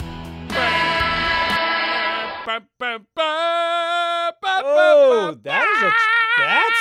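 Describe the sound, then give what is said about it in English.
A triumphant horn fanfare: a long, brassy held chord, two short stabs, another sustained note, then swooping notes that bend up and down before a final held blast, loud throughout. “That's the sound of the fancy triumphant horn.”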